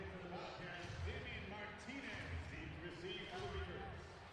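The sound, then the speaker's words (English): A beaver tail slap sound effect at an Oregon State Beavers football game, just before Montana State kicks off. It booms three times at a steady pace, each heavy thump ringing over the dense roar of the stadium crowd, with voices murmuring throughout. “Here's the Beaver tail slap.”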